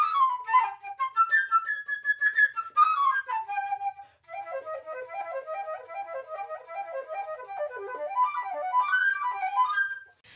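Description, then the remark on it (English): A bright, high melody imitates a chirping bird, Birdie's musical theme, full of quick trills, darting runs and rapid little flourishes. It plays alone and steadily for about ten seconds, with no voices. “I can just picture Birdie up in her tree branch, chirping and tweeting and quickly flapping her wings.”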